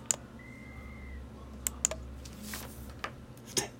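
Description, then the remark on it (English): A single short, steady, high-pitched referee whistle blast from a football sound effect, under a second long, with sharp keyboard-typing clicks scattered before and after it. No one speaks. “That's a referee whistle.”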